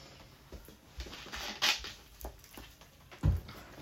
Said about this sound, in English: I'm going to take a little drink. I am conscious of slurping and smacking and how it sounds on here, and I'm sorry, everybody, but I'm thirsty.